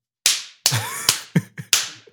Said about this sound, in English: And I clap, you can...